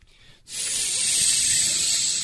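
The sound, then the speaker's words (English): A person imitates a snake's hiss with one long, steady, breathy hiss that starts abruptly after a short quiet pause and holds at an even, fairly loud level to the end. “And they had these snakes. And if you got bit by the snake, you turned into a snake.”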